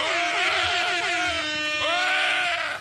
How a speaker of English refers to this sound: Who yelled at the end?